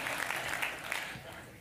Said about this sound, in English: Somebody clap your hands on that. I don't know, do we clap or?